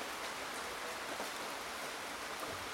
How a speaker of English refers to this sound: With the rain steadily pouring down and starting to push the awning we were under, we wanted to hurry and make a quick work of this task.